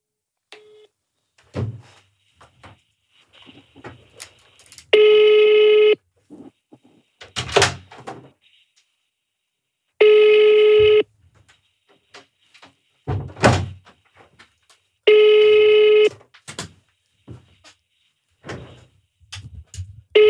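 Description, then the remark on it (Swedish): A telephone ringing tone sounds three times, each steady buzzing tone lasting about a second and spaced evenly apart, with scattered clicks and dull knocks from handling or dialing in between. No one speaks. The call is placed to Texas Longhorn. “Var ringer du?”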